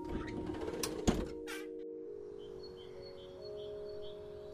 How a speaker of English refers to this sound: By the back door now, he took a deep breath, and he opened it.